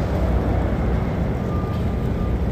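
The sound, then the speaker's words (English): A delivery truck's deep engine rumble rolls along a city street, a steady, fairly loud low drone lasting the whole moment with traffic noise around it and no one speaking. “Yes, there goes a delivery truck.”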